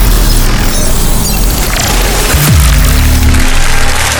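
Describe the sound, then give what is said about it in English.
A loud crowd cheering and applauding in a dense, steady roar for about four seconds, played as a sound effect. Midway a low tone slides downward, and a low hum lingers beneath the cheers to the end. “And the crowd goes wild.”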